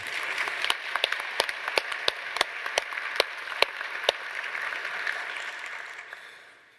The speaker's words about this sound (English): I felt when they finished, "And Can It Be," that we ought to have given the choir a round of applause. Don't you?